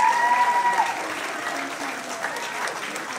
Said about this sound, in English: Ladies and gentlemen, please welcome the bride and groom in the centre of the floor. Come on, give them a big round of applause.